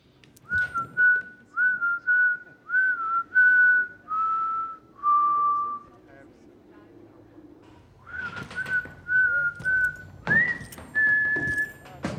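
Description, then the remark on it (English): A man whistles a slow tune in short, clear phrases of steady, slightly sliding notes, pausing briefly before resuming over some faint background noise; the whistling was recorded on location for a film. “The whistling was location.”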